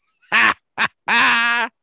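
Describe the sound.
A raspy, cartoonish duck voice quacks in three close, loud bursts, a short squawk, a quick clipped one, then a longer drawn-out quack, with nothing else audible around it.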